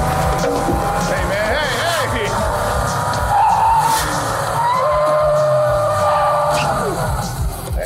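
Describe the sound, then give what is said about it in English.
A car swerves hard to avoid hitting anything, tires squealing in long rising and falling screeches over a loud, steady engine roar, with indistinct voices mixed into the din. “You see how much they cut just to keep that car from having to hit anything?”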